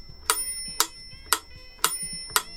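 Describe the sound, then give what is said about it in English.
A metronome with its optional bell switched on ticks steadily, five crisp, evenly spaced clicks about half a second apart, with a bright, ringing bell tone sustained over them. Fairly quiet, with no voices. “I love a metronome.”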